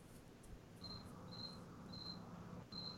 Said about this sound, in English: And you hear the crickets as nothing's happening.